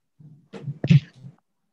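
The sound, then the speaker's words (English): A single sneeze: a short voiced inhale, then a sharp, loud burst that trails off into a brief breathy tail. “God bless you.”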